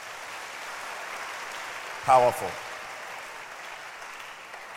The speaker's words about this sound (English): I want us to clap our hands again for the choir.